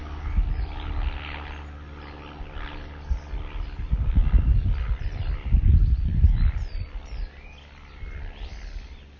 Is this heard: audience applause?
no